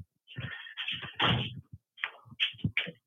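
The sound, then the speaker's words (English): A door is opened and shut as someone goes out to turn off a truck horn, with a series of clunks, rattles and a scraping rush of movement over a few seconds, then a couple of sharper knocks as it closes. “I've got to go out the door.”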